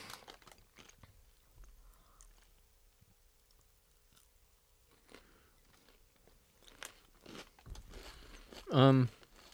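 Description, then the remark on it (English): Crisp crunching of someone chewing a crunchy sweetened rice snack with vegetable extracts, irregular bites and mouth clicks in quiet, followed near the end by a short, louder voiced murmur. “It gets worse as you chew it.”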